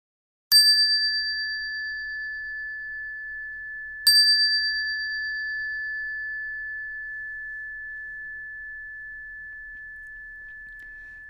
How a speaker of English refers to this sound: We will begin at the sound of the bell. We will now chant Jusege.